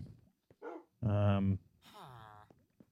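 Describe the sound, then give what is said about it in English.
A dog on the top floor of a building gives a short yelp, then a louder sustained bark, followed by a falling, whining whimper, all clear with brief quiet gaps between. “Skeletor 8849 is up here, along with his cats. Hey, buddy. And dog.”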